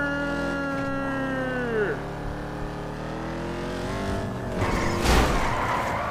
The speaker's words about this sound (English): This guy, man, this player, we're doing a drag race? Oh, burn rubber!